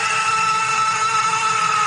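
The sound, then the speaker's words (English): Someone vocally imitates hitting a car horn before starting a drag-racing car, holding one loud, steady, buzzy blare for about two seconds without a break. No speech accompanies it. “I was a big drag racer back in the day, like really big into drag racing, and before I would start the car, my car horn, I would just hit it and it would go.”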